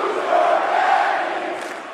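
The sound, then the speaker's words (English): A large crowd at a rally shouts in unison in a Nikki Haley super PAC ad, a dense, loud roar of many voices sustained for a couple of seconds, like a rally chant. “Who's your daddy, if you couldn't figure out what the crowds were saying there?”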